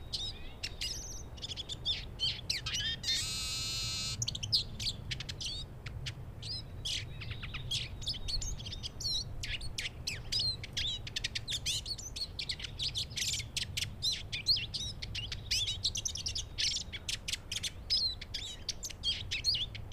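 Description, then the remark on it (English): A Eurasian siskin, a small finch, sings a rapid, high twittering song with repeated thin calls, including a brief sustained buzzy trill, continuing steadily over a low background rumble with no talking. “The song of the siskin is a high trill, which drops to the end to a low buzz.”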